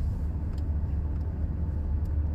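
A steady low rumble fills the inside of a moving car driving home with a quiet dog on board, constant road and engine drone with faint higher ticks now and then, no voices present.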